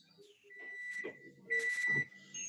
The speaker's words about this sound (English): There's someone got a car backing up.